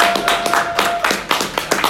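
A short round of applause: about eight sharp, loud handclaps in a fairly steady rhythm over two seconds, with no talking.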